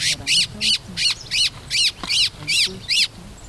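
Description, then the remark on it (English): A distressed white-throated thrush, a medium-sized dark gray bird with a white belly, calls as field researchers collect information on it, giving about eight loud, harsh, rasping squawks in a steady, rapid rhythm, with a faint low murmur in the background. “By the time I arrive around 8 o'clock, they're collecting information on an unhappy white-throated thrush, a medium-sized dark gray bird with a white belly.”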